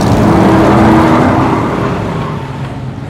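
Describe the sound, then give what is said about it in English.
An old motor car engine, its throttle thrown forward, rumbles loudly, a deep throaty drone with a whining tone at first, then gradually easing and fading over a few seconds. “threw the throttle forward, and her motor car rumbled to life and led the charge.”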